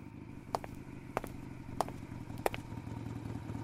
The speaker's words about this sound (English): I'm looking out the ranch window and there's someone outside. A motorcycle rider on a high-tech 2022 Ducati Superleggera with long, beautiful hair?